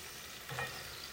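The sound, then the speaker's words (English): Tuna frying in a pan: a steady, hissing sizzle with a brief louder crackle partway through, fairly quiet, with no voices. “you can hear the tuna frying behind me”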